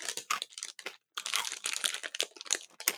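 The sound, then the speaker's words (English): Loud crunching of crisp Korean fried noodle snacks being chewed, a dense run of sharp crackly bites with a brief pause near the start, no talking. “To say these are crunchy would be an understatement.”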